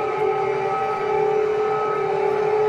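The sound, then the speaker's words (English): An air raid siren in Ukraine at the start of the war sounds continuously, a loud, sustained droning wail holding a nearly steady pitch with slight wavers, filling the whole stretch with no voices over it. “So the air raid sirens are going off in Ukraine when the war started.”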